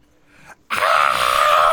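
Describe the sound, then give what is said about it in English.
A brief low murmur, a short pause, then a loud, sustained shrill shriek like a crossbow bolt whistling through the air, steady to the end, apparently made by a human voice. “As shrieking through the air is a crossbow bolt.”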